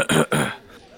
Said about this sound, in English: … will clear his throat.